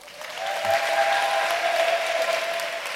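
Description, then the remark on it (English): A crowd bursts into steady, dense applause that holds at an even level for a few seconds, the many overlapping claps merging into a continuous patter with no voices standing out. “Clap for him small.”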